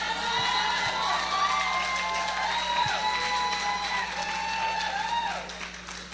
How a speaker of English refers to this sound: Something ain't right. I got the loudest applause. Something ain't right.